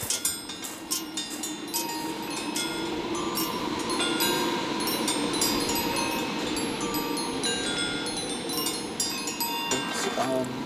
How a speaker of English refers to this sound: And we have these kind of triangles and hoops that, when the wind blows, make this kind of nice chiming noise.